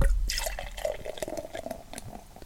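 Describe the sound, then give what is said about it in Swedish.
Beer, a 9.9% Lagunitas ale, glugs and splashes as it pours steadily into a glass, with a bubbly gurgle, a faint fizzing hiss and scattered drip-like ticks, and no voices. “Så, och så har vi ett riktigt glas den här veckan.”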